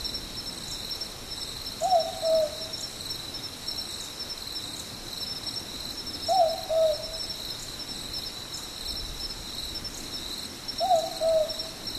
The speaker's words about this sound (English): Anna Pollack sent this recording in from Dangar Island. It's a mopoke, the southern boobook with a chorus of crickets.